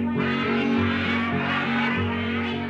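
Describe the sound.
A nasal, buzzy quacking, probably imitated by a voice or instrument rather than a real duck, repeats in about three pulses over a steady, humming musical backing.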